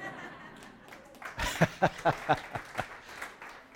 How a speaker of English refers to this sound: I thought somebody was giving a clap there. You can give a clap.